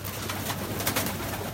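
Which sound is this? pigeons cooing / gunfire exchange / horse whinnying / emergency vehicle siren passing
pigeons cooing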